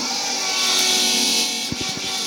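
The electric motor of an oil priming pump drones and whirs continuously, pumping oil around a tank's 38-litre V12 engine, a dense mechanical hum with faint clicks and knocks near the end.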